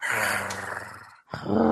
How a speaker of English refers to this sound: And a tiger growl.